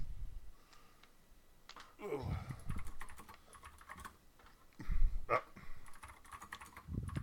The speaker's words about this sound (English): What are you typing?